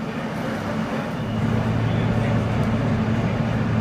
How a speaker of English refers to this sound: Oh, look at that, we're on an F train. Let's listen to the announcements.